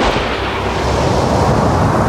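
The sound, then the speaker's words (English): A loud, continuous rumble of thunder rolls through a tempest with lightning, a dense, roaring wash of sound that holds steady for about two seconds without fading. No voices are heard. “the luminous cloud, is merely an electrical phenomenon, not uncommon in a tempest like this.”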